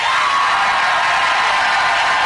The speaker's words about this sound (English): The crowd went nuts there as that auto worker went out there with that.